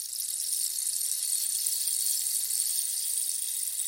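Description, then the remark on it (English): A rain stick pours out a steady, unbroken shower of tiny beads, a bright, high-pitched granular hiss that holds an even level for the whole few seconds, with no voices. “We have evolved so much since then, as now we understand the rain stick for its true value, silencing the voices inside.”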